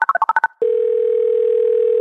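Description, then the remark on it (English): About seven quick touch-tone beeps as a phone number is dialed to make a call, then a steady, loud telephone dial tone that hums on without a break to the end, with no voices. “All right, let's make a phone call”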